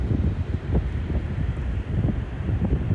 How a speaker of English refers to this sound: We also went down to Laysdown again by the sea and actually went on the beach. Unfortunately, the recording I took is so windy. I don't think you can really get the gist of what it was like.